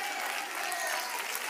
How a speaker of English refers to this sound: Come on, somebody, clap your hands right now. Come on, clap your hands right now.